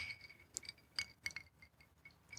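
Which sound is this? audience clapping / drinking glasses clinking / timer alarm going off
drinking glasses clinking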